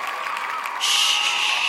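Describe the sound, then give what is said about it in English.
A crowd of Julia's Labor supporters cheers loudly and continuously after Labor wins the Australian federal election, as Kevin Rudd takes government, a dense roar of voices that swells louder partway through with no clear words. “They were cheering so loudly she couldn't hear a thing.”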